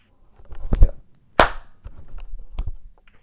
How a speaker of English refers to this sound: Can you clap one time for me?